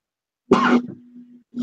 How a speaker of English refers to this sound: Oh, no, sorry. That was actually a cough.